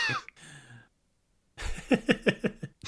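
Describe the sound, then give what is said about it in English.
A person voices an imitation of a dry, dusty cough, like that of someone who lives in a very dusty house: a breathy exhale, a pause, then a rapid run of five or six raspy hacking bursts in a loud, uneven rhythm. “That was a good dust cough.”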